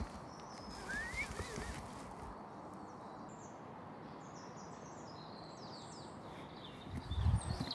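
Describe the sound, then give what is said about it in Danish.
Horses being scolded shift about in an outdoor paddock with soft shuffling hoof sounds, and birds chirp intermittently overhead. A heavier thud of movement comes near the end against steady background noise. “Heste, der bliver skældt ud.”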